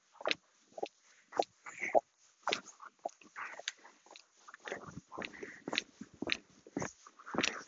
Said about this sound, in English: That dog reminds me of the hyenas from the Lion King